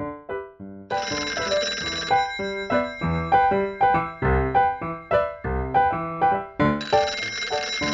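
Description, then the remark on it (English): A telephone rings with bright, bell-like tones repeating in a quick, steady rhythm for several seconds. The ringing is loud, with no voices. “Jane, the telephone's ringing.”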